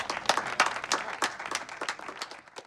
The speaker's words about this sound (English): A round of applause for John.